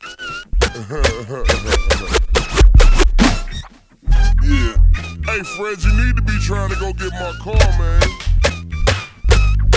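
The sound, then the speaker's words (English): A rapid burst of about a dozen sharp, loud gunshot-like bangs cracks out over the first few seconds, set against a thick musical backing that carries on afterward. “Gunshots.”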